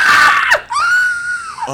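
A person lets out a loud, high-pitched scream of fright, a sharp shriek that breaks briefly before rising into a second sustained wail, close and intense, with no talking.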